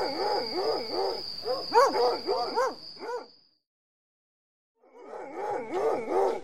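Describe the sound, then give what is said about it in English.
Several hounds bay and bark in quick, overlapping bursts, loud, with a thin high whine running underneath. The pack falls silent for a second, then starts baying again. “See if your hounds can find anything.”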